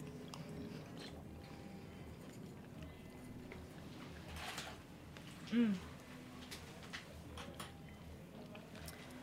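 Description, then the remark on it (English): Soft, wet chewing, steady and repeated over several seconds as someone chews a raw oyster with a pearl in it, with a brief low hum partway through. “And in this case, you're looking to chew the pearl and pop it and the oyster thoroughly, like 30, 40 chews”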